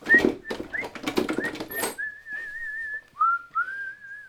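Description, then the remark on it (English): A person whistles a cheerful tune while climbing the stairs to an office and opening the door, starting amid footsteps and door noises, then holding long wavering notes clearly, with no talking. “I was whistling as I climbed up the stairs and opened the door.”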